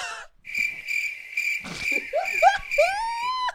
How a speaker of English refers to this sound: I'm glad we added that sound. Yeah, yeah. The crickets.